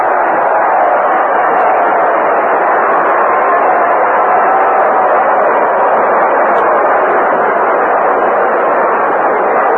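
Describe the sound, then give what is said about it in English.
A baseball stadium crowd cheers as Roger Maris, who has hit his 49th home run of the year, comes up, in a steady, unbroken roar for about ten seconds, loud and dense with no pauses and no one speaking over it, sounding thin and muffled like an old broadcast. “Listen to the crowd.”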